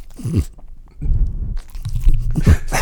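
A dog named Maggie chews noisily on the microphone, with loud, irregular crunching bites and wet, low smacking sounds over a few seconds. There is no talking.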